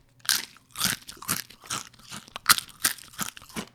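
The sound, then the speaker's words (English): Loud crunching of sturdy Zach's Mighty tortilla chips from a bag, about eight sharp bursts in a steady chewing rhythm, with no talking over it. “Can you hear that? Not only are these chips sturdy and crunchy, but they're absolutely delicious, and they don't break in guac.”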